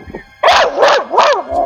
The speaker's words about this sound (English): Sit down. There's another dog here.